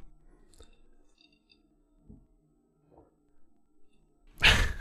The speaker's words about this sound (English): swallows louder than anything on Earth. Apparently it's true. You can hear it from space.